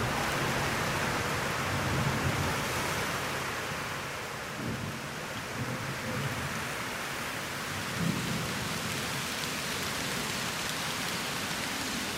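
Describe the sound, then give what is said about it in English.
Steady, dense rain hisses continuously at moderate loudness in the Peak District National Park in central England, with a few soft low rumbles rolling underneath at intervals. No voices. “Oh, and also, it's rain.”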